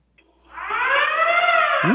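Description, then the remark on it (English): A loud siren-like hunk alarm wails up from quiet, holding a steady, slowly rising harmonic tone for over a second, continuous with no voices. “And you have to sound the alarm? Is that what you're talking about? Yeah, the hunk alarm.”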